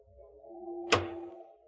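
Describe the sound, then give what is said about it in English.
A burglar forces a window lock open with one sharp snap that quickly fades, set against a steady low hum, with no voices. “He broke the lock like a veteran.”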